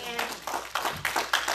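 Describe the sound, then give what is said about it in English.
A church audience claps hands in praise in a steady, rhythmic pattern, a crowd's worth of claps landing in repeated bursts, with faint voices mixed underneath. “And as our custom is, give God a good hand clap of praise for that.”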